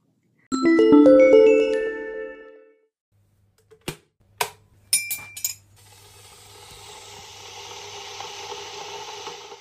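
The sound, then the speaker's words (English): During a tea break, a spoon strikes a teacup with a bright, ringing chime, followed by four quick, sharp clinks of china, then a soft, steady hiss fills the rest. No one speaks. “Time for a quick cuppa and a stretch.”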